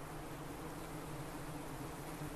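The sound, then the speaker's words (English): A dense, continuous hum of hundreds, probably thousands, of ivy bees buzzing at a nest aggregation in a clearing among pine trees about 100 metres across. A steady swarm-like drone with overlapping wingbeats fills the air, unbroken, with no voices. “Wow, I'm looking at, there must be hundreds of bees here.”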